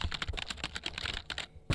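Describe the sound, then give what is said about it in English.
Rapid clatter of computer keyboard typing for a Google search, a steady run of crisp keystrokes with a brief pause before a final heavier key press. “This isn't me typing.”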